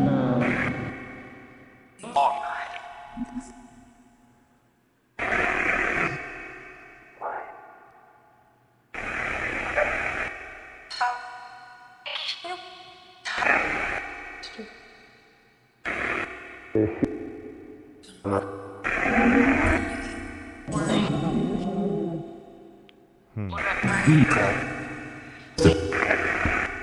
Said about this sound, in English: I'm gonna turn the white noise off. In my opinion, that white noise is just interference. It's kind of blocks out what's being said.